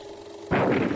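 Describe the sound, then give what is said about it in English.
A steady low tone gives way halfway through to a sudden, loud, roaring blast of gunfire in a trailer for the film The Fighting Phantom, staying harsh and dense until the end, with no talking. “Roaring guns and singing slugs.”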